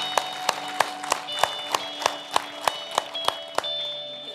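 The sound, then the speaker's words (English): An audience claps in unison for the Lord at a morning service, a steady, brisk beat of about a dozen sharp claps over a few seconds, with a soft crowd murmur and faint sustained tones underneath. “Can we give the Lord a big hand clap for that this morning?”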